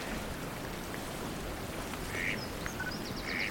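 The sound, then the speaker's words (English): A mallard duck by a jetty gives two short, raspy quacks, spaced about a second apart, over a steady hiss of rain-like noise, with faint high bird chirps in the background. “So, just an exotic mallard so far.”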